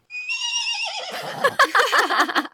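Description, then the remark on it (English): A little horse in California lets out a high, quavering whinny that starts with a long tonal cry, then breaks into rapid, shuddering pulses before trailing off, fairly loud with no talking over it. “And I think that it seems like the horse agrees with me.”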